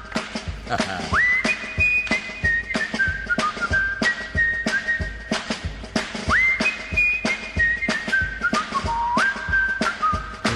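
Someone whistles a tune in clear, bright tones, gliding through a stepping melody in two repeated phrases, with a steady rhythmic backing underneath.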